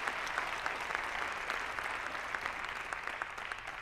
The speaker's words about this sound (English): Somebody put your hands together and give Jesus a hand clap of praise.